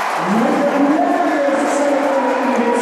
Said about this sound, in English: 10 minutes now. Wigan lead by 2, and the crowd really fired up now. John Bateman roars at the crowd.